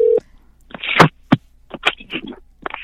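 A brief steady electronic phone tone cuts off, followed by a scattered series of short clicky, chirping bursts, like call-connection sounds on a phone line. No one speaks.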